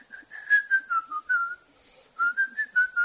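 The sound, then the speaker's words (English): Someone whistles a melodic tune in clear, sustained notes that rise and fall, pausing briefly midway before continuing; fairly loud with no talking. “And you were whistling on the bike.”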